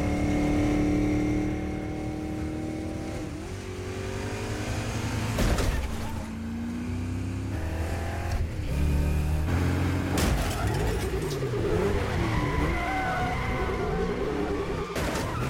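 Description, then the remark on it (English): A loud V8 muscle car roars and revs through gear changes, its engine note rising and falling, with bursts of tire squeal and skidding as it slides around, continuous. “They nailed it on the sound of that car.”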